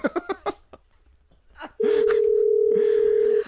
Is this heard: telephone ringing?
yes